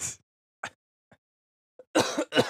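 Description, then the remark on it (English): Harsh coughing: a short burst at the start, a few faint small sounds in a near-silent gap, then two loud coughs in quick succession at the end. “I can't wait till this fucking cough goes away.”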